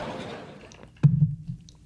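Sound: glass clinking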